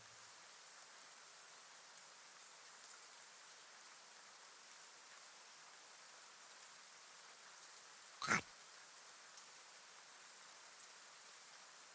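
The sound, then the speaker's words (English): Steady rain falls in a continuous soft hiss, spread evenly across the whole scene, with one brief, sharp crack or knock cutting through it partway along. No voices are heard. “This cabin would work for shelter from the rain.”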